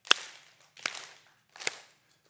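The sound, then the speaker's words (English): An audience claps together in unison with a speaker who asked them to clap along: three sharp, loud claps at a slow, steady pace with a fourth just beginning. Each clap rings out briefly before the next, with no voices. “So everyone, I want you to clap with me.”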